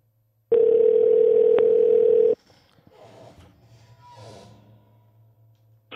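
A loud, steady telephone dial tone holds for about two seconds, with a brief click partway through, then cuts off into quiet line noise and faint breathing.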